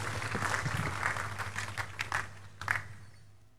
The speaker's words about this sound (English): Please take your seat. Give the Lord a big clap.